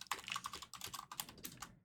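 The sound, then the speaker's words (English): Rapid keyboard typing, a quick irregular run of light clicky keystrokes, continuing for a couple of seconds with no voices over it. “it's like typing.”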